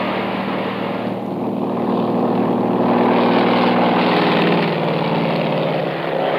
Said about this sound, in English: We reach the plane, yank open the door, and dive in. Frank guns it off the ground just in time.